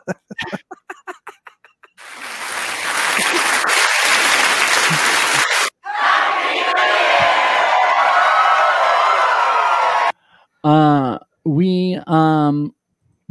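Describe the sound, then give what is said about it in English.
A brief spoken line gives way to loud, dense applause from a large crowd, lasting about eight seconds with some cheering mixed in, before a voice resumes talking. “Where's the applause, huh?”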